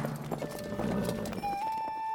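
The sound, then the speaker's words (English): Sir Gawain's horse's hooves clip-clop in a steady, quick rhythm, fairly loud, as he rides out into the country to find the Green Chapel, while sustained tonal notes hum underneath and a high whistling tone enters near the end. “Gawain dug his spurs into the side of his horse and rode out into the country to find the Green Chapel.”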